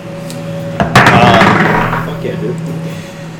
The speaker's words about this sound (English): Yeah, basically, right now the sound of combat is intensifying. You can hear there's a combat.